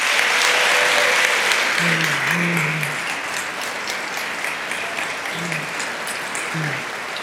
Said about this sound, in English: And we're also joined by, yes, give them applause, former governors David Patterson and George Pataki.